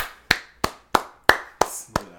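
Six sharp hand claps in a steady, even rhythm, each a crisp slap that fades quickly, with no talking over them.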